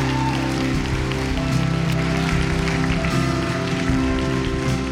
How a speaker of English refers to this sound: Would you give your pastor a hand as he comes? Where are you, pastor?